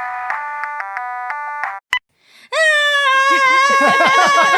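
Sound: mobile phone ringtone ringing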